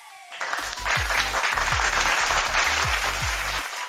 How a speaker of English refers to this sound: A clap for them.